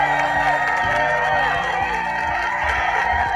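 A crowd applauds and cheers steadily, with whoops and shouts over dense clapping at a loud, constant level throughout, plus a low rhythmic tone running underneath.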